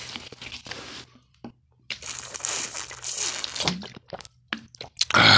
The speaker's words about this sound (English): So, I'm just going to have a drink of water here, and then I'm going to have a chew some coca leaves.